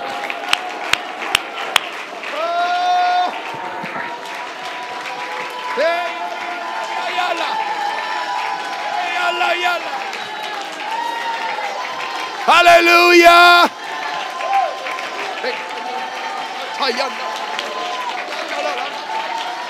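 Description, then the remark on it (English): A church audience claps and rejoices in praise of God, a few sharp claps at the start giving way to a steady wash of crowd noise and raised, wavering voices, with one louder burst near the end. “Go ahead, just clap your hands now and just rejoice.”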